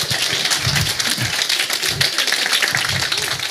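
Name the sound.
round of applause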